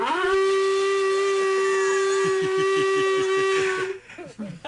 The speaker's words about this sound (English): So here's the ram's horn from Planet of the Apes. I'll play. That's so cool. Let's hear it. Here we go.